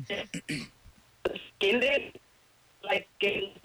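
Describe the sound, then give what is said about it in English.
A caller's voice comes through a garbled, low-quality phone line on line six, in choppy bursts of muffled, distorted speech broken by brief dropouts, with a faint steady hum underneath. “Your phone sucks”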